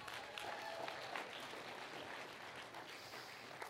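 An audience at Harvest Fellowship applauds all the dads in a steady, dense wash of clapping that holds at an even level for a few seconds, with faint crowd murmur underneath and no clear speech.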